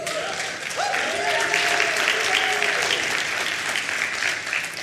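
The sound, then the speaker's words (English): A crowd applauds steadily for about five seconds, dense clapping joined by a few high vocal whoops and cheers rising over the noise. “That's something to cheer about, folks.”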